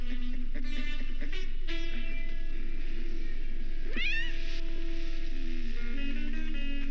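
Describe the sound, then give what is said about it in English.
A cat meows repeatedly in drawn-out, wavering calls, with one sharp rising cry partway through. No one speaks, and the meowing fills the whole stretch. “And I thought I knew all the cats in the islands.”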